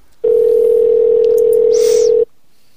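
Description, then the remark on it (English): A loud, steady telephone dial tone hums for about two seconds and then cuts off abruptly, with a faint brief hiss near the end and no voices, as a call back is placed on another person's phone. “let's call back on Dan's phone”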